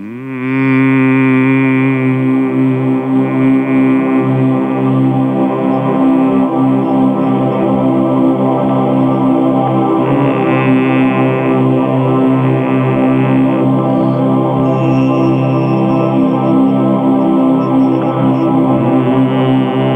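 A sustained, deep chanted "Om" drone hums continuously, layered voices holding a steady low pitch rich in overtones, loud and unbroken throughout with no talking.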